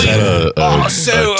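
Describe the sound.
A large bear breathing heavily in a house in Rockdale, noticed by police searching the house: loud, deep, rumbling breaths with a growly, voiced edge, one long exhale cut by a brief pause before another rough breath follows.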